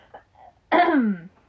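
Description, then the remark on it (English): A single rough throat clearing, fairly loud, lasting about half a second with a descending, gravelly tone, preceded by faint low murmuring. “That one made me want to cough.”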